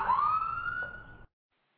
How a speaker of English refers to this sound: I heard some sirens or something going on.